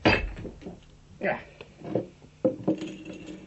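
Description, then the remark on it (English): Holmes strikes a plaster bust with a hammer in a handful of sharp, uneven blows, each followed by a brittle crunch and the clatter of falling fragments, revealing the black pearl of the Borgias embedded in the plaster, with low voices murmuring between impacts. “Ah, Holmes, what are you doing with that hammer?”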